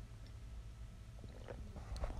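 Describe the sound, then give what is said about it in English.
Quiet sipping of coffee over a steady low hum, with a couple of soft wet slurping and swallowing sounds near the end and no talking. “Just taking a sip of my coffee here.”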